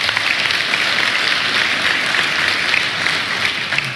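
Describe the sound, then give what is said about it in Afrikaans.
A large church audience applauds steadily for the leaders of its cell groups, a dense wash of many hands clapping at once, sustained and fairly loud throughout without any voices standing out. “So kan ons vir hulle lekker hande klap gee.”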